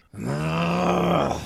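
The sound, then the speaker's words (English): A man, a runner in a multi-day race angry at a rival trailing him, lets out a single low, drawn-out growling groan of annoyance, fairly loud, holding steady for about a second before cutting off, with no words spoken. “He grumbles and growls, and at one time stopped short to allow the newsboy to pass.”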